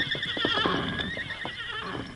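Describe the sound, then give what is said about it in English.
A horse hitched at the rack in front of a hotel in a deserted town whinnies loudly, a shrill, wavering neigh that fills the whole moment, with faint hoof clops underneath and no talking. “Arriving there, he rode boldly down the street when he saw that the town, to all appearances, was completely deserted, except for one horse hitched at the rack in front of the hotel.”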